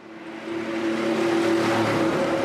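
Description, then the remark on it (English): A red electric bus arrives on a dark Budapest street in Hungary just after 5 p.m. on a chilly weeknight, a steady motor whine humming over broad road noise that swells in the first half second and then holds loud. “Executive Alpár Bódis stands on a dark Budapest street waiting for an electric bus. The red bus arrives.”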